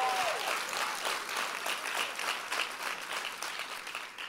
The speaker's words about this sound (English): I wish you'd clap like you really mean it. Come on, this is the last service of the day.